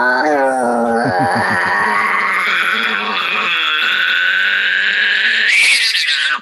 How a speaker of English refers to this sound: the sound of a rabbit dying sounds like a child screaming